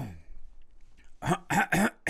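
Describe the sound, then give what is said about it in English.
A voice falls quiet for a moment, then a quick series of four harsh, gravelly throat-clearing bursts follows, loud and rhythmic, like someone clearing their throat before speaking. “Clear your throat.”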